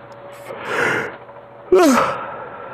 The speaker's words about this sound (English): Mercy, I knew that was coming. Big yawn in aisle three, my friends. I need some coffee.